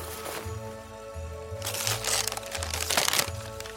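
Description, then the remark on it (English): Gift wrapping paper crinkles and tears in a few quick, noisy bursts as presents are opened on December 25th, over a low steady hum. “Charles Talbot, opening presents.”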